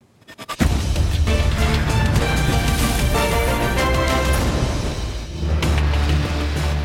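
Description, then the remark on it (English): A loud stock exchange opening bell, as aired on CNBC's Squawk on the Street, rings steadily for several seconds after a few brief knocks, its clanging tone dense and continuous with a busy wash of noise underneath, dipping briefly before resuming. “You're listening to the opening bell of CNBC's Squawk on the Street.”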